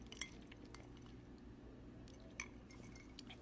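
Someone quietly sips coffee from a mug, with a couple of soft ceramic clinks and faint handling sounds over a low steady hum, no one speaking.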